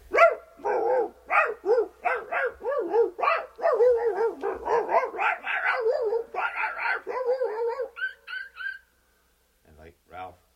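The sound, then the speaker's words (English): A voice imitates a dog fight in which several dogs gang up on one dog: rapid, overlapping barks, yips and snarling growls in a frantic burst for about eight seconds, ending in a few high whimpers and a last short bark. “these dogs ganged up on Ralph, and there was a dog fight, and it went something like this”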